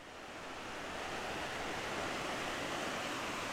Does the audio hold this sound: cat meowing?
no